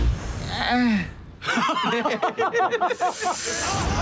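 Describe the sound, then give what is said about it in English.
A Texas rat snake hisses in a breathy, steady rush, then a burst of rhythmic laughter breaks in before the sharp hissing returns loud at the end. “It's a Texas rat snake.”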